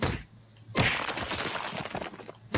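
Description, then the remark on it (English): In a video game, a character punches a wall: a sharp impact sets off a loud crash of the wall breaking apart, with crumbling debris rattling for over a second before a second hit begins at the end. Sound effect, no voices. “Do I punch the wall?”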